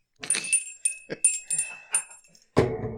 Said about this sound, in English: This time of year, whenever you ring your bell, do I have to like give you like a quarter like you're the Salvation Army?